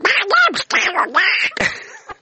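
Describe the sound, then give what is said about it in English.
A voice imitates Donald Duck, squawking out a quick run of raspy, garbled quacks in several loud bursts, with brief gaps between them. “Well, Donald Duck died, you know.”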